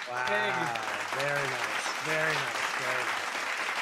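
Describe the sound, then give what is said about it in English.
A clapping sound effect played to celebrate a 22nd birthday. A steady wash of applause runs throughout, loud and continuous, with four rising vocal cheers or whoops riding over the clapping at roughly even intervals. “Where's the fucking clapping? There we go.”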